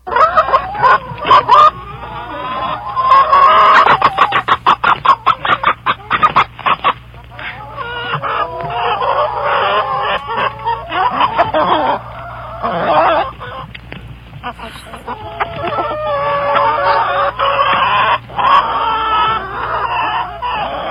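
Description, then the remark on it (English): A flock of farm chickens clucking and squawking busily, with overlapping calls and short sharp bursts, fairly loud throughout with no voices. “Or maybe chickens.”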